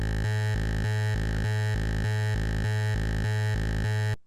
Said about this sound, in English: So we're hearing 32 hertz and 64 hertz there, which is the sub bass frequencies. And there's actually quite a lot of high frequency content because I'm not using a sine wave, I'm using a click.